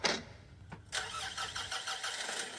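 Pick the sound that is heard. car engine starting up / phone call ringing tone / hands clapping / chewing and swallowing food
car engine starting up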